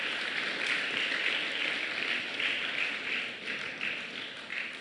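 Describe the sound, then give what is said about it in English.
A crowd applauds steadily for a few seconds, a dense wash of many hands clapping at once, fairly loud throughout and tapering slightly toward the end, with no voices above it. “Please, just give them a round of applause.”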